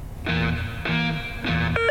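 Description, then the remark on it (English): Three loud, harsh electronic buzzes from a game show buzzer in a song-guessing quiz, each about half a second long with a rich, raspy harmonic tone, followed by a brief higher electronic blip at the end. “please don't break my buzzer”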